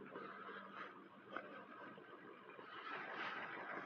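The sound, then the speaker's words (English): A truck engine idles steadily, left running with its keys inside, a continuous low rumble with a faint mechanical hiss that holds even for a few seconds, with no voices. “You gotta love it when people leave their keys in their trucks, the truck's running.”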